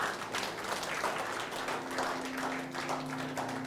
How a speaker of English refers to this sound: Amen? Amen. Hallelujah. Give the Lord a clap. Amen.